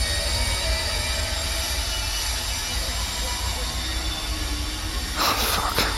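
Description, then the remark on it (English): A steady, loud industrial roar from a refinery, threaded with high, piercing metallic squeals that sound almost like a drawn-out scream, known as the Baraska scream, swelling into a harsher burst of noise near the end. “The Baraska scream. It's just the refinery, Sam.”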